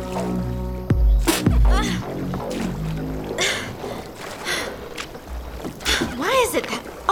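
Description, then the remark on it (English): A boat being rowed in Florida on a nice day, with repeated splashy strokes of oars through water and bursts of wet noise, while voices and strained vocal sounds come and go over the rowing. “Turns out we're too young to rent a boat with a motor.”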